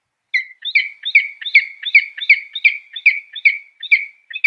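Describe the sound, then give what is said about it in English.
Peregrine falcon courtship calls exchanged between a mated pair in spring: a rapid, steady series of a dozen or so harsh, chirping notes repeated at an even rhythm, loud, with no voices. “For example, they make special calls to each other, like this.”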